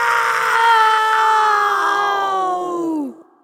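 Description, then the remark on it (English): A person's voice imitates the scream of the winter hag, a witch: one long, loud, shrieking cry held for about three seconds before sliding down in pitch and cutting off. “The winter hag screamed. Will you scream with me”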